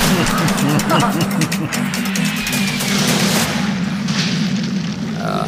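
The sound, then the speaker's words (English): A loud movie-trailer explosion with a deep, sustained booming rumble and dense crackling noise filling the whole moment, with a muffled voice faintly underneath. “Well, not after that explosion there, isn't it?”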